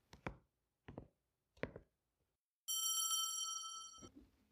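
Three sharp, evenly spaced knocks, then a bright, steady ringing bell sounds for over a second, loud and sustained, ending in a soft thud. No one speaks.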